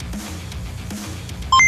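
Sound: computer beeping sound effect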